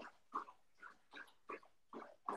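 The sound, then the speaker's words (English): A puppy laps water in a quick, steady rhythm of wet slurps, about seven in a couple of seconds, fairly quiet, with no voices. “Okay, I'm just going to keep going while we don't listen to Max's dog drink water.”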